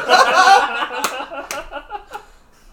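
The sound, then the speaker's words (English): A hand slaps a knee three times in sharp smacks spaced about half a second apart, over hearty laughter that trails off into chuckles. “he slapped his knee three times.”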